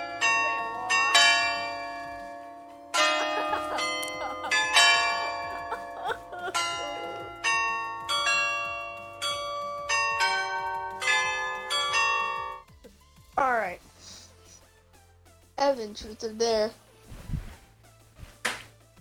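Wedding church bells ring loud in a busy, overlapping peal of repeated strikes with long ringing tails, then give way to a few brief, wavering tones near the end.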